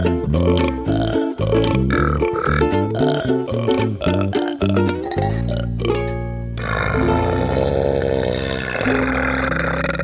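A string of loud burps with shifting pitch, ending in one long, drawn-out rumbling belch that carries on for several seconds, with no talking.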